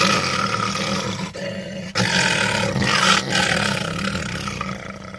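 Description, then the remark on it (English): Voice actor Frank Welker imitates a lion in a sound booth, recording lion sounds for the film The Lion King: a sustained, loud, raspy roar with a couple of brief breaks, growling and rumbling throughout. “Here's Frank in a sound booth recording lion sounds for the movie.”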